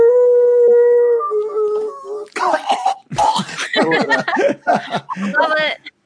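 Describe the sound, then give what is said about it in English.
A person lets out a sustained, wavering wolf-like howl for about two seconds, imitating the animal, then breaks into lively talking and laughter. “That was a good howl.”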